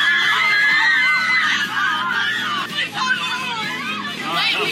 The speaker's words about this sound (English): But the people were going nuts